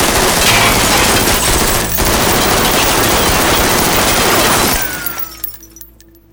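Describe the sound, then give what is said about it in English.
A loud, dense burst of automatic fire from two Scorpion machine guns in thick rain rattles nonstop for about five seconds, then cuts off, leaving scattered tinkles of breaking glass and debris settling. No one speaks. “he brought the Eclair to a hard stop as soon as he saw Axel blocking the middle of the road, holding two Scorpion machine guns pointed directly at the windshield.”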